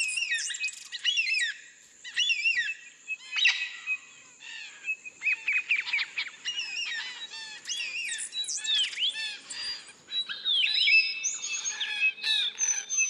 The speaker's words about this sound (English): David Stewart, a wildlife sound recordist, has spent more than 30 years collecting often rarely heard sounds of Australia's wildlife. And it's his bird recordings that have been used on the album.